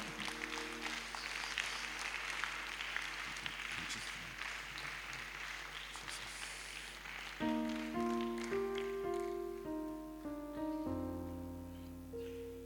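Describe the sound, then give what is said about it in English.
A crowd on their feet claps for Jesus steadily in dense, crisp bursts. About halfway through, sustained keyboard chords come in, and the clapping carries on beneath the music. “Oh, clap for Jesus very well.”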